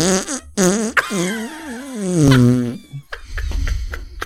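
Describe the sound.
A long, wobbling raspberry blown with a person's mouth on their forearm, imitating a fart, with buzzy pitch sliding up and down for a couple of seconds, followed by a few short sputtering bursts. Fairly loud.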